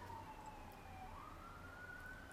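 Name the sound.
emergency vehicle siren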